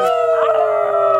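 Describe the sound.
Several voices join in a sustained, wavering, loud howl imitating a wolf, holding one steady pitch throughout.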